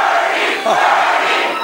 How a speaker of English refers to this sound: All right, while they chant and shout and feel the burn, in quotes,